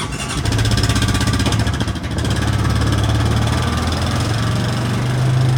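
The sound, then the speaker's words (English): A traditional farm quad bike engine starts up and runs loud and steady with a low, buzzing drone and mechanical rattle, briefly dipping before its pitch rises at the end as it revs. No one speaks. “and you've just jumped on a traditional farm quad bike.”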